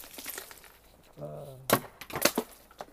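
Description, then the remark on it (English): Icicles are knocked loose with a few sharp, brittle cracks and snaps, clustered in quick bursts. A short low hum or grunt comes just before the first loud crack. “And like I say, I'm definitely trying to knock these icicles off so nobody dies.”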